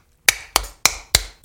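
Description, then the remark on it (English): Five sharp, evenly spaced slaps on a can of Oscar Blues Brewery 10:50 Imperial Stout, each a bright metallic smack with a short ringing tail, in a steady quick rhythm with no voices. “Slap shit out of it. Crack it open.”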